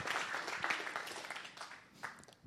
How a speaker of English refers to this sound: Let's give him a clap offering.